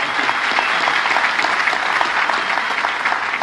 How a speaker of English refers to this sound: And I just want to give you a huge round of applause. For that. Thank you.